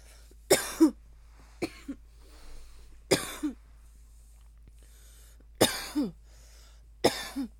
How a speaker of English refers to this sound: I can't stop coughing. Hold on. That's probably because I smoke cigarettes.